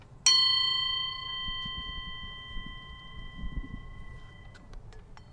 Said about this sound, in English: Now, please close your eyes, take a deep breath, and focus on the sound of the mindful bell.